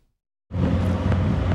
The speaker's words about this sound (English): There's an impenetrable fog ahead as the car moves carefully along a slippery road.